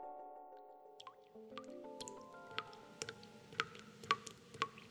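Water drips steadily from a leaky faucet, each drop a sharp plink growing a little louder, over soft sustained musical tones with no one speaking.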